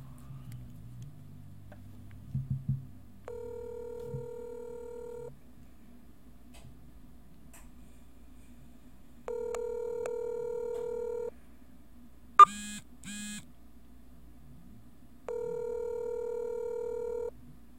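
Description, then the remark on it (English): A few quick dialing blips at the start as someone phones another person, then a telephone ringback tone purring three times in long, evenly spaced two-second bursts, with a brief click between rings and no one talking. “Gonna give him a ring-a-ding-ding.”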